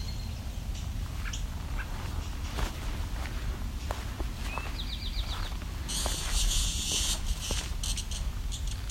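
A cicada lets out a loud, harsh buzzing burst lasting a second or two, preceded by a shorter, fainter buzz, over outdoor ambience on a trail among cedars and white spruce, with footsteps and scattered bird chirps.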